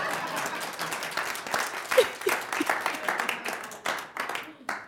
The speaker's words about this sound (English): Everybody should be clapping.